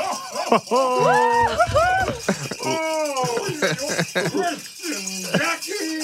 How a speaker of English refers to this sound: Oh, my gosh. I hear bells ringing.